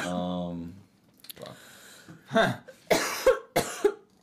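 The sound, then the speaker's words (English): A brief voiced sound, then a quick series of four harsh coughs in uneven bursts, each sharp and breathy, with short pauses between them. “I'm going to be coughing a lot.”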